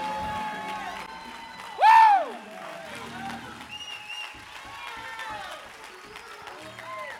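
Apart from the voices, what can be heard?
audience clapping hands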